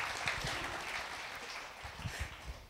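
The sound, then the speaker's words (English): An audience applauds steadily, a dense patter of many hands clapping at an even level throughout, fairly soft overall with no voices over it. “Please give our trees a round of applause.”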